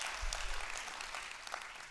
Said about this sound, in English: Can you give the Lord a big old hand clap of praise today? Amen?